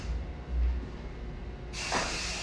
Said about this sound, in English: I'm spraying spray, so my store don't smell like me. I can't. I'm walking in a cloud. I'm walking on sunshine. Yeah, yeah. It's supposed to smell like bamboo.